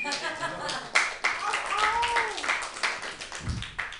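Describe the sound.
A small group claps steadily for several seconds, a quick, uneven patter of hand claps, while voices chatter and cheer faintly underneath.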